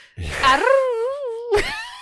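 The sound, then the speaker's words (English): A person imitates a British, Northern England werewolf howl with a single sustained vocal wail that starts breathy, glides up and then settles into a wavering mid-pitched tone, ending with a short breathy rise. “It's a British howl.”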